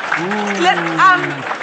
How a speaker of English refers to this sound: Wow. Let's give him a big round of applause.